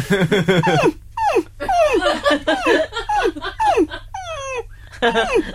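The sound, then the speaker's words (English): A person imitates a dog whimpering, producing a series of high, whiny, falling cries in close succession with brief pauses, loud, with no other talk. “No, I did dog cry.”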